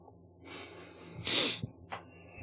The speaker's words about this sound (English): That was a smug sniff like, right there.